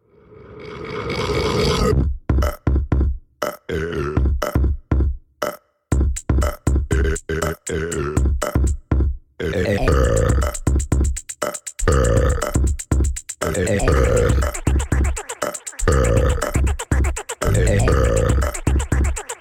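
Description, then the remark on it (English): A one-minute song built entirely from burps, pitched up and down into melodic notes over a thumping low beat, loud and continuous with brief choppy gaps, no talking. “Every single sound that you're about to hear is a burp. It was like either pitched up or down or whatever.”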